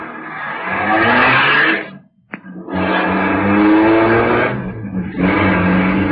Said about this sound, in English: At the moment that she's sending the big car roaring down the driveway, you're reaching in her dresser drawer for her small .22 caliber pistol.